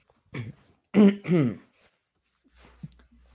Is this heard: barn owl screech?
no